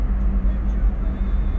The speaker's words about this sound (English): It's going to be, look at all this traffic over here. By the strip malls and stuff where we was driving by yesterday.